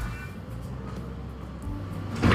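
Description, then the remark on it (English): A door opens as someone comes out, with a short, sharp rattle near the end, following a couple of seconds of steady low rumble and background hum. “He just had to come out that door.”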